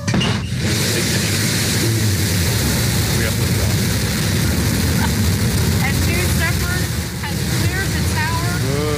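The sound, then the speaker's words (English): Rocket engines roar at the liftoff of Jeff Bezos's rocket flight into space, a loud, steady, rumbling blast that fills the whole stretch, with faint voices rising briefly beneath the din. “Yeah, dude, here's the liftoff. 5, 4, command engine start.”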